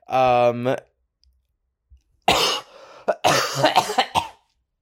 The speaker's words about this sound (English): Well, I don't know what that cough was about.